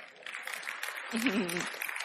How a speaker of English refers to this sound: And they're applauding this utter nonsense and mishandling of God's word. Clearly, the people at Church Unlimited have no idea what the Bible actually says.